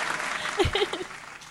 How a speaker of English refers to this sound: The applause is deafening.